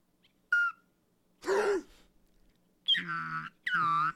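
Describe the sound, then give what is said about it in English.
A slide whistle blown clumsily in a few short, separate bursts: a brief squeak, a breathy airy puff, then two wobbly, sliding toots with a rough, unsteady pitch. “That's a terrible noise. Whoops, what okay. are you doing to my slide whistle?”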